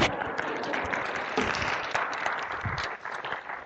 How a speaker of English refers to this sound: And that's change. You can clap for that.